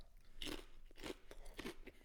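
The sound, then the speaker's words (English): Crunching as someone bites and chews a crisp Ruffles sour cream and chive potato chip, with three loud crackling bursts spaced about half a second apart and no talking. “I like the crunch of it.”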